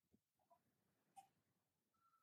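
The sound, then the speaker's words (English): A single quick sneeze during a recording in allergy season bursts out with a sharp, hissy rush of air, preceded by a few faint breathy sounds and followed by quiet background noise. No talking. “I sneezed totally in the middle of recording today.”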